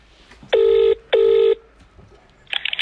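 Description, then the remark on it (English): Two long, steady electronic phone tones ring one after the other, followed by a quick cluster of higher dialing beeps, as a phone call is placed. The sounds are clear, with no talking. “So we're going to get him on the phone now.”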